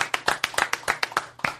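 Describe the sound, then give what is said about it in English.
Brisk, steady hand clapping welcoming a studio guest, about a dozen sharp claps in a quick even rhythm, fairly loud, like a small group applauding with no one talking. “Is it weird that I'm applauding, too?”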